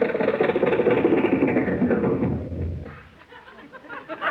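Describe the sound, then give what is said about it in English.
A Lincoln car, driven into a studio, runs its engine with a steady, dense rumble for a couple of seconds, then winds down and dies away, leaving only faint low noise and a small thump at the end. “Boss, the gateman let us drive right into the studio with the car.”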